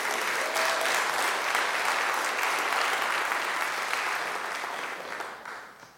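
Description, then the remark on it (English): An audience claps in response to a preacher's words about worship of Jesus, a dense, sustained wash of applause that holds at full strength for several seconds, then begins to thin and fade toward the end. “Why are you clapping?”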